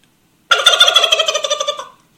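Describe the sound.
A person's voice imitates a turkey gobble in one loud burst of rapid warbling pulses lasting about a second and a half, trailing off at the end, with silence around it.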